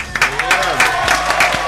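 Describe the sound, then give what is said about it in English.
An audience claps steadily in a dense, continuous burst of applause lasting under two seconds, with some voices faintly mixed in beneath the clapping. “Can we clap it one time, man”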